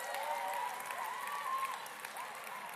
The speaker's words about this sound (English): Let's give these youthers a round of applause. They give up a week to come. Look at that. Amazing. Big round of applause to your youth leaders.